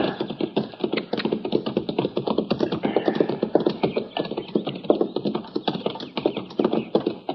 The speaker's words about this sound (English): Now, that's horses down there, Chester. Yes, sir. I can see the heads now. I don't see anybody driving them.